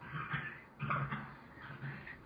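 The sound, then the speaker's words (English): A dog makes a few short, low grumbling vocalizations in quick succession, fairly quiet, with no one talking over them. “Hey, dog.”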